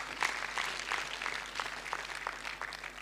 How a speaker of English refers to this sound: You clap for Joseph.